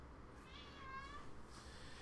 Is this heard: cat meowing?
yes